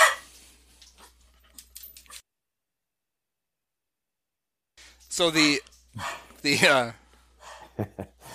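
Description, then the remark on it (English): Several dogs bark and yip excitedly in quick, high-pitched bursts, with a few loud barks standing out, after a short spoken word and a brief silence. “it's the peanut gallery.”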